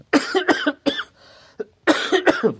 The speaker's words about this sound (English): You know, it's funny as an artist, let me cough here.